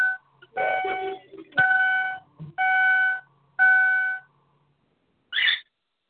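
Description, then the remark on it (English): A pet female cockatiel gives a string of loud, shrill whistled calls, four sustained piercing notes with short pauses between, then a final brief squawk, with no talking. “A cockatiel. Sometimes she gets to, as soon as we start the show, sometimes she starts going.”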